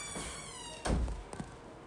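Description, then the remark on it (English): A door swings shut with a single dull, low thunk, followed by a couple of softer knocks as it settles. A faint steady tonal hum runs underneath. “Baby, close my door.”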